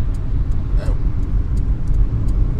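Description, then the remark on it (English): Steady low engine and road rumble from inside a moving car taking an exit, continuous and fairly loud, with faint rustles and small clicks over it and no one speaking. “So we'll take this exit here.”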